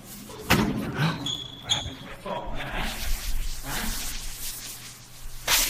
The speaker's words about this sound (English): Ooh! That's a hard open hand slap.